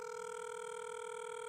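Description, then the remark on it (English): A steady electronic telephone ringing tone from an outgoing call to the caller's sister on the US East Coast, around 8:30 at night there, hums continuously and evenly, clear but not loud, with no voices or other sounds. “My sister, let's talk a little about it while the phone rings.”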